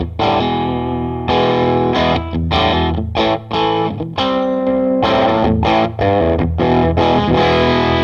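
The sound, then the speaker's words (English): Crunchy, overdriven electric guitar in humbucker pickup mode, played loud through a small tube combo amp with the volume cranked for distortion, ringing chords and short riffs with gritty sustain and brief pauses between phrases, no voices. “We haven't heard the distortion on this thing yet. So I'm going to humbucker mode.”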